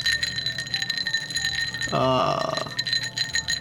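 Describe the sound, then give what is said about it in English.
Ice cubes clink against a glass of Cloven Hoof dark spiced rum, leaving bright ringing tones that hang throughout, with a fuller, louder rattle about two seconds in before it settles back to a steady chime. “I've got a rock in the bottle.”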